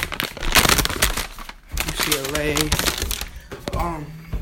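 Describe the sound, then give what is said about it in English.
Crinkly rustling of a paper sheet being handled, in irregular bursts of crackle, with someone's voice briefly murmuring over the second half. “I have a paper right here.”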